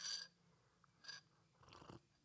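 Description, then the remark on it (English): Quiet slurps of someone sipping hot tea: two short airy sips a second apart, then a softer, longer swallowing sound, with no talking. “excuse me as I sip my tea, hold on.”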